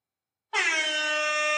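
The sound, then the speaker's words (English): A loud, sustained air horn sound effect kicks in abruptly after a brief silence and holds a steady, brassy tone for over a second, cutting off sharply at the end. “Let me give you some noise after each one. You know what I'm saying? All right. That works. Air horn.”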